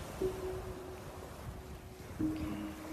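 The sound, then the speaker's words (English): Steady wind and rushing ocean surf fill the scene outdoors, a constant broad roar with a faint low drone running through it and brief swells in loudness. No one speaks. “Oh, he's at he's an ocean or something.”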